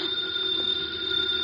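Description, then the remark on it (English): A house telephone rings steadily and continuously, a bright electric trill at moderate volume with no pause, and no one speaks. “The phone is ringing.”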